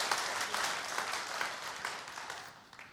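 A church audience applauds steadily, many hands clapping in a dense, continuous patter that holds strong for a few seconds before beginning to thin out toward the end.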